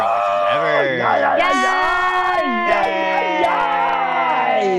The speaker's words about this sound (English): So much yelling. Yeah! Right? So much yelling. We're all yelling. Woo.